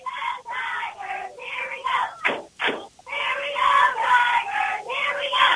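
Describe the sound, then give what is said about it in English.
A large football crowd at a night game in Washington roars continuously, with loud overlapping cheers and yells swelling and dipping for several seconds, energetic throughout. “Good crowd here in Washington here tonight, as it's going to be little kids' cheer night, I believe.”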